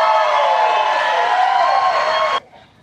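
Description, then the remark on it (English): A crowd of hundreds of Republicans at a political rally in Georgia cheers for Mike Pence, whooping loudly in a dense, sustained roar for a little over two seconds before the sound cuts off abruptly, leaving faint residual noise. “I mean, we can hear the cheers there.”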